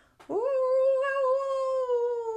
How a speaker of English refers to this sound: That night, when the bright moon rose in the east, Coyote saw his handiwork and began to howl.